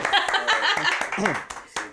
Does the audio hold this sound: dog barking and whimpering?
no